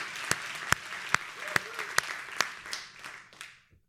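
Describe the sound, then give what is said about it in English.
A church audience breaks into applause when a preacher asks who would say God has been faithful to them, a dense wash of many hands clapping with a few sharp louder claps standing out, then it thins and fades away after a few seconds. “In fact, by a clap of hands today, who would say that God has been faithful to them?”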